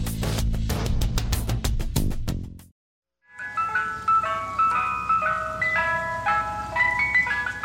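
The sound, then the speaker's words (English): A tinkly ice cream truck jingle plays a bright, repeating melody of chiming notes over a low engine rumble, after a brief burst of rhythmic clanging and a short silence. “The ice cream truck. For many of us, it was game on when we heard that sound.”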